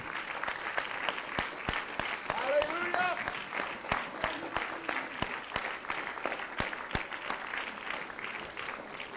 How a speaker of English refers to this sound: Give him a hand clap of adoration.